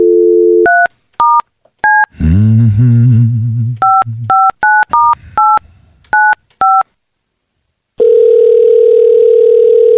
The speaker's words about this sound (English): It's ringing. Usually what happens when you dial a phone number.